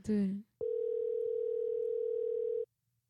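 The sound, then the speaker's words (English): A short burst of a voice, then a single steady electronic ring of an outgoing phone call, lasting about two seconds before cutting to silence with no answer. “I think he's not gonna pick up.”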